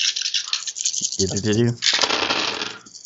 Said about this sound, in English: So, At this point, everybody needs to roll initiative for me. Oh, initiative. It's that thing you do when you roll some dice and add some more dice to it.